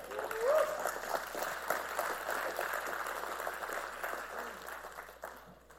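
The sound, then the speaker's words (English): An audience at a Christmas sermon breaks into steady applause for God, a dense patter of many hands clapping at once that holds its level for several seconds, then slowly thins and fades toward the end. “Somebody ought to give him a hand clap.”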